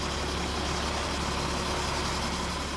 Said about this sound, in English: A moving truck idles outside Peter Avitabile's townhouse in Rockland the morning of the third scheduled eviction.